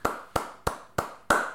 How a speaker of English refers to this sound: Big round of applause.